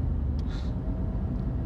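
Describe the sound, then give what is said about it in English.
A heavy truck getting off the interstate rumbles loudly, a deep steady engine drone with a short hiss of air brakes partway through, almost running someone over. “There was this truck getting off the interstate, and they were not paying attention.”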